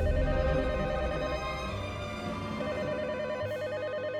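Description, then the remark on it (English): A telephone rings with a warbling electronic trill, sounding in two bursts separated by a brief pause, fairly loud, over a steady tonal hum with no one speaking. “But that night, we're hanging out, and the phone rings.”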